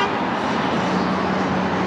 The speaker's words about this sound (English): Did you hear that? Somebody was beeping at me.